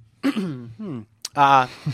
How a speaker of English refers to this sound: I was not coughing because of that. I just cleared my throat.